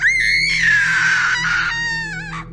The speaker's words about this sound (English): Loud scream was heard, continued for almost a minute, then died down suddenly.